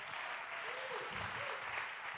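A steady, dense round of applause from an audience, many hands clapping continuously at an even loudness for the whole stretch, with a faint voice murmuring underneath.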